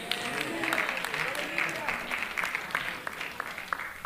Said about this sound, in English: Your clapping and amens are really cheap today.